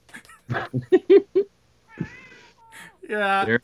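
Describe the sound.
A cat meows twice, a thin drawn-out cry followed by a louder, fuller one close by, coming just after a burst of someone talking.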